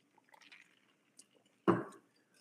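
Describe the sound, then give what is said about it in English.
A quick sip of alcohol from a glass: faint wet slurping at first, a brief pause, then one louder, thick gulping swallow that fades fast. No one speaks. “And you know we can't have a talk about Martin Luther, the motherfucking king on this show without taking a little sip of this alcohol.”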